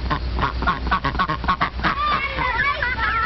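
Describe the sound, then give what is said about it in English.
Ducks quack in a rapid, repeated series of harsh, nasal calls, then shift into higher, wavering chirps, fairly loud against a steady low background rumble. “Ducks need to have their wings clipped.”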